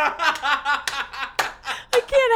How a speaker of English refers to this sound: is like over his head monkey clapping.